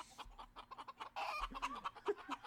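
Chickens cluck in quick, uneven bursts as they are being hit, several short clucks overlapping with a busy, agitated rhythm and a louder flurry partway through.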